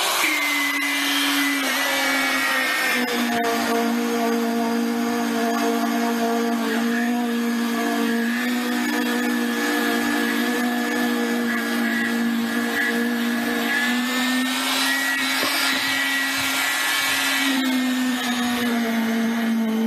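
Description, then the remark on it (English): A concrete vibrator consolidating poured concrete, taking out air pockets and voids, drones loudly and continuously for the whole stretch, a buzzing motor whine with strong overtones whose pitch sags slightly at times and then climbs again. No one speaks. “takes the voids out of the concrete, so you'll have a much more solid pour.”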